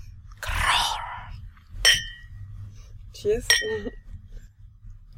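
Glasses clink together in a toast, a few bright ringing taps, mixed with a soft rustling burst and brief murmured voices in the background.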